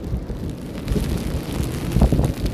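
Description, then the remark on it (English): Steady, dense rain hiss blends with a deep rolling rumble of ocean waves breaking on a beach, swelling slightly toward the end, with no voices. “And hopefully you can hear what I'm saying through the rain and the ocean waves.”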